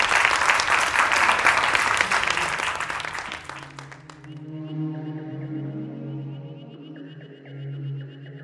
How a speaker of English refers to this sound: Please join me in giving a round of applause for this chat today.